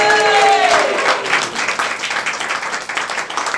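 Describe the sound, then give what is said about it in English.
An audience at the Stand Up Tragedy show applauds loudly as a performer is welcomed back to the stage, a dense wash of clapping that stays steady for a few seconds, with a brief whistle or cheer rising at the start. “Can you give the Dave a round of applause?”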